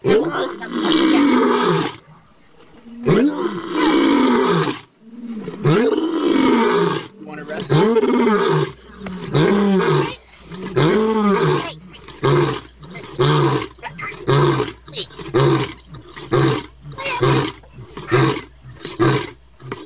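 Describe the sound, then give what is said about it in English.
A lion roars again and again, loud, in a string of deep rumbling bursts that get shorter and quicker toward the end, with brief pauses between them. “I wasn't supposed to bring the lion this time?”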